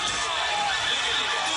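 A dense, continuous wash of concert crowd noise, loud and steady like a large audience cheering and shouting together, with no single voice standing out.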